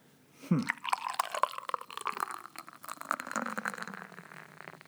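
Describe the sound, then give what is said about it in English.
Banquet beer glugs and splashes into a glass, a bright gurgling pour that starts with a burst and settles into a steady foamy rush, no voices over it. “I'm going to pour you one while you ponder that.”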